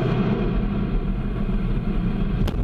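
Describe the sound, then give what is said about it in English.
A loud, steady rocket engine roar rumbles continuously, dense and low, with a brief crackling burst near the end; no voices are heard. It is the Vulcain main engine and boosters of an Ariane 5 rocket lifting off from the Kourou spaceport in French Guiana, carrying the 4,100-kilogram BepiColombo probe. “Roar of her engines, a lot of fire, and with a BepiColombo on board, the DDO says all is well.”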